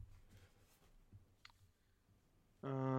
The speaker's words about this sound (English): For some reason, the Olive Garden is trending, so I'm clicking it.